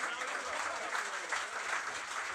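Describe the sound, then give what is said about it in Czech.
An audience applauds steadily at the close of the live tour show, a dense wash of many hands clapping at once that holds an even, fairly loud level throughout with no voices rising above it. “Ještě jednou teda zatleskejte”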